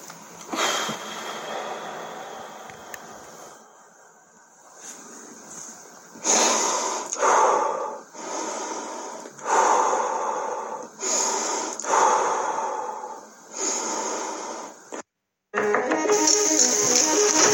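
Heavy, labored breathing of a man having a panic attack, loud ragged gasps and exhales coming in quick succession roughly every second or so, with a brief pause near the end and no talking.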